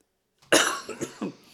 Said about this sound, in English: I apologize. I'm probably going to cough a lot on this episode. I've been like super sick over the last few days.